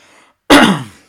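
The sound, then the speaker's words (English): A single loud, harsh cough-like throat clearing bursts out after a brief quiet moment, then trails off quickly. “Wow, that's loud. That's why they have them cough buttons, hey?”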